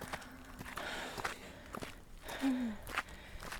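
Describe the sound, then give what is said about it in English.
Footsteps walking at a steady, even pace, about six evenly spaced steps over a noisy background, with a brief low squeak or breathy tone partway through. “Keep walking, same pace.”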